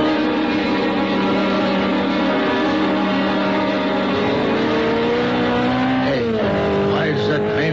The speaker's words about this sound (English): The sports car looked like a Simonetti. I couldn't tell. Went by me too fast. Must be doing close to 90 or 100. Heading west on Trumbull.